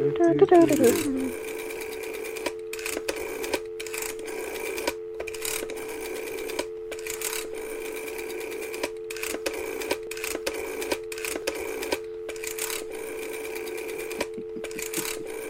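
A rotary phone dial turns and spins back again and again, sending rapid bursts of ratcheting clicks with short pauses between, over a steady hum like a dial tone.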